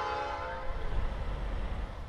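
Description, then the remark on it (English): A train in Gary rumbles past while its horn sounds one long, steady tone over the low clatter of rolling cars. No one speaks. “Because those trains, they go nonstop around here. I mean, just listen to them out there.”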